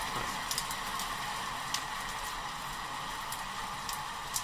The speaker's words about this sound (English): I'm going to play you one recording of rain.